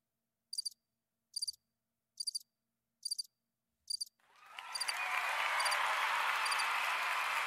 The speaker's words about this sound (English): There's some crickets in there, but that was better than the other two, right?